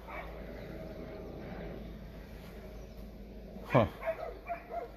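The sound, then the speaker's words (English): Over a steady low background hum, dogs bark: one sharp, loud bark, followed by a few shorter, softer barks in quick succession near the end. “But sorry, guys, the dogs are going off over here, and I'm trying to figure out what are they barking at.”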